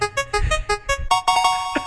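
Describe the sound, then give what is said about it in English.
A quick run of bright electronic beeps, pulsing rhythmically before settling into a longer sustained tone, with no voices. “Yes, beep, beep, beep, so... Beep, beep, beep.”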